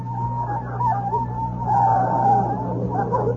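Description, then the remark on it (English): A car engine hums steadily while a wavering, squealing tone rises and falls above it, like brakes as the car pulls into a parking space by NBC Studios and slows to a stop, moderately loud with no talking. “All right, I'll stop the car.”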